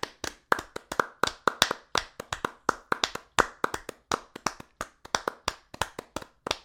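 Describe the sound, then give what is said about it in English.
Steady, brisk classic opera-style hand clapping, one sharp clap after another in a fairly even rhythm, clear with no voices, like a single person applauding for several seconds. “You may not have been in a position where you could be at an opera, but that classic opera applause like this.”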